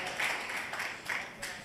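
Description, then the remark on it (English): Audience applause from the women, with the men not clapping: a steady, dense crackle of many hands clapping at moderate loudness, swelling slightly a few times across the short stretch, with no clear words spoken. “Whoo, the men are not clapping, the women are.”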